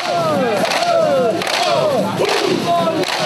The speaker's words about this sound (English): And the police advanced at a fast pace into the sandy parking lot, beating on their shields. Shield shatter is meant to intimidate protesters. This is what it sounds like.